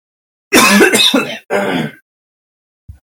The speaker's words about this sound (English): Sorry, you had to keep hearing me clear my throat.